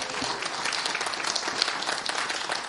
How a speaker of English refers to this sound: Fantastic. Can we give another round of applause, please, for the puppets?